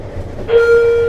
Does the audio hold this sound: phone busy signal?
no